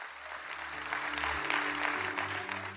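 An audience claps for Jesus together in a dense, steady wash of applause that holds at a fairly even loudness, with low sustained musical tones humming underneath.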